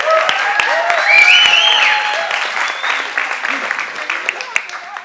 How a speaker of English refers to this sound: And I never get applause, by the way. He wants applause. We need to give him applause.